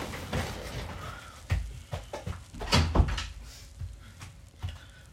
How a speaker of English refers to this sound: Hold on, let me click my stupid door.